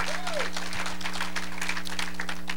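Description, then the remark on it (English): An audience gives the Lord a hand clap of appreciation, clapping in a dense, steady burst of applause, many overlapping claps blending into a continuous wash with a low electrical hum underneath. “Go ahead, give the Lord a hand clap appreciation.”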